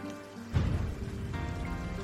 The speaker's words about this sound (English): as another of the quite regular summer afternoon storms started to draw upon the elements in order to manifest itself into being. Just as the first drops of rain began to fall,